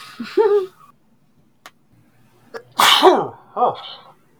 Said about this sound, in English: Now I'm sneezing.